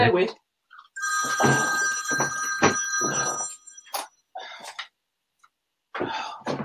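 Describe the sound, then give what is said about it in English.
A phone left upstairs rings with a bright, trilling electronic tone for a couple of seconds, loud, with short bursts of voice and bumps before and after. “the phone's ringing off the hook”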